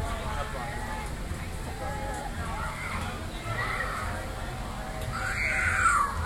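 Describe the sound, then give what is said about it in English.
A child screams near the end, shrill, rising above a constant wash of crowd chatter and bustle at the Magic Kingdom theme park. “And there's our screaming child to confirm that we are at the Magic Kingdom.”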